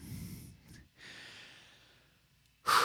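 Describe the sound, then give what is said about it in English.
A person breathes heavily and deliberately, trying to control their breathing: a long low exhale, a brief pause, then a drawn-out airy breath that tapers off before a sharp, loud snort-like intake at the end. “Are you trying to control your breathing again?”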